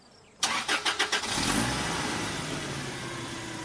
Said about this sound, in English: Katie revved the van's engine.